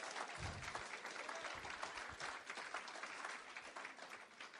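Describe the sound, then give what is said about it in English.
A crowd claps steadily for several seconds, a dense, continuous wash of applause with no voices standing out, applauding a man who was ordained the day before. “Round of applause.”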